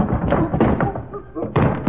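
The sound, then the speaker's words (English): Jerry Colonna runs into a pot at the end of a rainbow: a loud crash followed by a few heavy thumps and clattering knocks over about two seconds, with a voice faintly mixed in. “You almost knocked me down. Well, what do you know? Ran right into the pot.”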